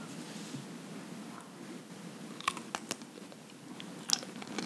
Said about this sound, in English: Oh, she's wet. That was such a nice crunch. Oh, it's so spicy.